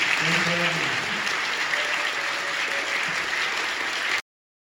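An audience breaks into steady, dense applause, many hands clapping together in a continuous wash of sound for about four seconds, with faint voices murmuring underneath before it cuts off abruptly.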